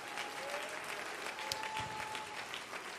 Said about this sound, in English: Why don't you clap your hands unto the Lord? If you're in expectation, why don't you clap your hands to the Lord a little louder?